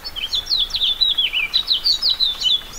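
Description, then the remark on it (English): A house finch sings a lively, jumbled warble of quick high notes, running continuously, with a faint hiss of light April rain in the background, in the Anza Borrego Desert of southeast California. “The sweet, jumbled notes of a house finch rise above the sound of the rain.”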